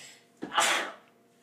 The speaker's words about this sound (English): Don't worry, guys, I did the vampire, so I sneezed and then the crevice of my arm.